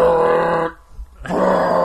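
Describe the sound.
A voice imitates the loud, foghorn-like sound of a film score with two long, low, buzzing blasts separated by a short pause, each tone steady and rich in harmonics.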